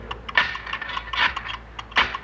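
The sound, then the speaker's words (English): A Geiger counter takes a radiation reading inside an airlock, clicking and crackling in quick, irregular bursts, the sharp ticks clustering into dense flurries and then thinning out, moderately loud, with no voices. “Hand me that Geiger counter, son.”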